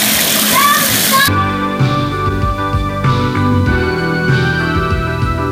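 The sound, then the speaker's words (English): Bath water gushes loudly into a tub for just over a second, with a voice over it, then cuts abruptly to steady tonal, music-like sound. “I gotta run the rest of this bath water.”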